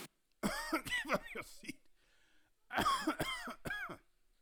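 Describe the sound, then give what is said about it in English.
Two clusters of loud, voiced coughs and throat-clearing by a man, several pointed bursts in each, separated by a short quiet pause, sounding deliberate and suggestive, like an attention-seeking "ahem." “Also, the man kept coughing in what seemed like a suggestive manner.”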